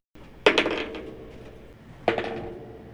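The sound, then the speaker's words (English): Dice clatter onto a hard tabletop twice, each roll a quick burst of rattling bounces that settles fast, with no voices; the dice are rolled for perception checks in a game. “Oh, that was the one. Alok, you rolled.”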